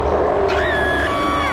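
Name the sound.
dragon roar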